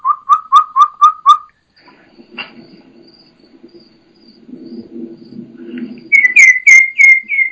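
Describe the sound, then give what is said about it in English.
A person whistles a quick run of five high, piping notes imitating a turkey's kee-kee call. A quiet rustling pause follows, then a turkey hen answers with a similar series of sharper, higher-pitched kee-kee calls. “So that was just me kikiing, but here you go.”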